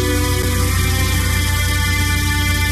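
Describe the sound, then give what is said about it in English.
Calm, sustained sleep music from Fizz, a sleep and power nap system, of steady droning tones with hidden low tones forming a deep, humming layer underneath, held at an even moderate loudness throughout with no voices. “This isn't ordinary music. Can you hear the hidden low tones in there?”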